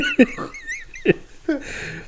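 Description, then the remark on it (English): A wolf trying to get in whimpers in thin, high whines between three sharp bumps or scratches, with no one talking. “The wolf is trying to get in.”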